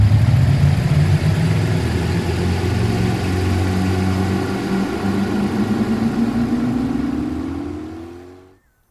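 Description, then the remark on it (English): The engines of fanboats heading out near the mangroves give a loud, steady roar that drones continuously, its low pitch slowly rising as they rev up, then cutting off abruptly at the end. No voices are heard. “All the men loaded up their coolers and weapons on their fanboats and headed out near the mangroves.”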